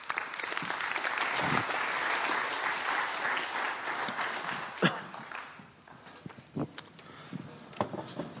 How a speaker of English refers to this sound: I'm going to invite my friend Matt to come up on the stage right now, and we're going to share a little bit of his story that intersects this. Would you give Matt a round of applause?